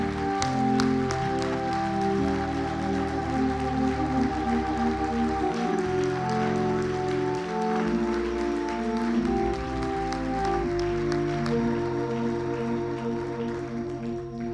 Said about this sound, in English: Let's clap our hands like we really mean it this morning.